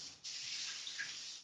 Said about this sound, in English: And at regular intervals, she stops, the procession stops at a house, and the woman of the house ladles water over her.